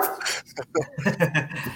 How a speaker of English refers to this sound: there goes my dogs, they're mad because I just mentioned cats, apparently.